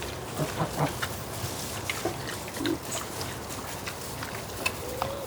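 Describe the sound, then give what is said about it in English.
Several pigs grunt and snuffle in a steady, overlapping chorus of low, short grunts, with a few higher squeaky notes, all fairly quiet against a busy background. “And if they're grunting, they're happy and alive.”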